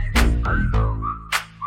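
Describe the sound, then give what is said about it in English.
A clear whistle glides up and then slowly down in pitch, followed by a short second whistle, over a heavy bass beat with sharp percussive hits. “Damn that ass fat had the whistle like.”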